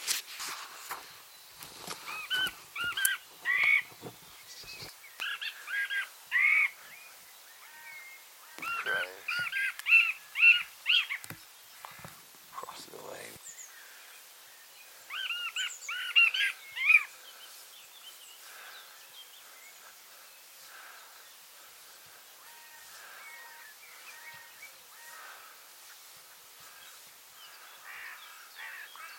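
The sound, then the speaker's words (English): A blue tit repeats an odd, scratchy song in short bursts for about fifteen seconds, clear, then fades out, leaving quiet outdoor background with soft rustling. “More blue tip. Why has it got a song like that though?”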